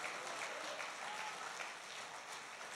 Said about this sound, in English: If you believe that with me tonight, why don't you let God hear you? Put your hands together and give him a great hand clap.